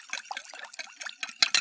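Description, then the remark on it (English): Powder being stirred into water in a bowl with a spoon: a quick series of wet sloshing and scraping bursts, getting a little louder toward the end, with no voices. “He says, "Give me a bowl and a spoon," and he mixes the powder with some water.”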